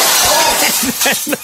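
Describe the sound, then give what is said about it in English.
A turkey crashes through a window of a house, a loud, bright burst of shattering glass that crackles and sprinkles throughout, with short raised voices breaking in near the end. “It smashes another window.”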